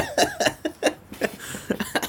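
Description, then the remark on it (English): A rapid series of harsh, breathy bursts where coughing blends into laughter, about eight or nine spasms in two seconds, fairly loud with no words spoken. “I coughed and laughed at the same time, and I sounded like Steve Rule crying.”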